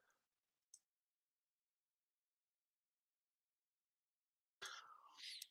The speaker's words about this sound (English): Healthy or not, excuse me as I have a sneeze coming on here.